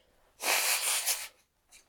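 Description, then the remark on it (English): A forceful nose blow: one rough, breathy blast lasting about a second, followed by a short, quieter puff of air. No one speaks. “I gotta blow my nose.”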